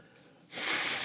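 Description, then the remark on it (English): A single sneeze: after a faint lead-in, a sudden loud, hissing burst of breath bursts out and carries on for about half a second. “And Gesundheit.”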